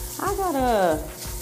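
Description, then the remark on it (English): A shower runs in the morning with a steady, full hiss that never lets up. Partway through, a brief wavering voice-like tone rises and falls over the spray. “Yeah, you hear that shower?”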